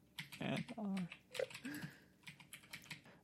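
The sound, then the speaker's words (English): Quick, irregular clacking of keys on a computer keyboard as someone types a Google search, moderately loud, with a couple of brief whining tones breaking in partway through. “Come on, keyboard.”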